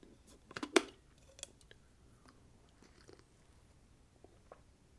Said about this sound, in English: I need another sip of coffee.